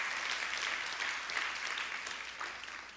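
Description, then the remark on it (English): A crowd applauds steadily for a few seconds, a dense wash of many hands clapping at once that holds loud and then tapers slightly toward the end, with no voices over it. “Come on and clap your hands if you're thankful for that today.”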